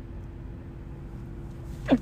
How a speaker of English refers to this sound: I had to sneeze. Sorry about that. Didn't want to... You know, I have a weird sneeze, but it's okay.